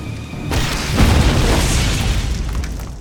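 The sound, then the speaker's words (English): In the film Android Cop, Android Cop fires a grenade launcher with a sharp report, and a heavy booming explosion follows a moment later as the grenade knocks down Dex Muldoon, its deep rumble rolling on and slowly fading, with no voices. “Android Cop fires a grenade that knocks down Dex Muldoon, and Hammond is all pissed and starts yelling at Android Cop.”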